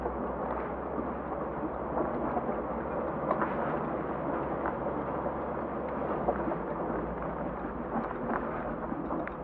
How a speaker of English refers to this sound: Helicopter. By the time you hear them. Yeah. They're gone. Well, here's a helicopter.